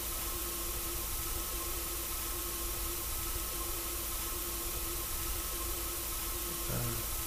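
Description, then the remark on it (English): Steady, even line static hisses throughout, with a faint tonal hum and a low, churning wash like water moving in a large vessel underneath; a brief low blip near the end. “Static over the line. Water in a large vessel.”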